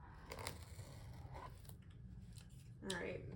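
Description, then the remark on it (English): Scissors snip and cut through stiff material to open a box, a handful of crisp strokes at an irregular pace, with a low murmur of background noise underneath. “And then there's the scissors for you.”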